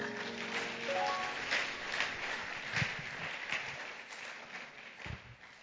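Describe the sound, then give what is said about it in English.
A church audience at the Overcomers service claps steadily, a dense wash of many hands with a few louder individual claps standing out, while a faint rising organ-like tone sounds early on. “Oh, your clapping is...”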